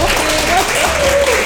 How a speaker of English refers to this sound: Okay, y'all give her a big round of applause.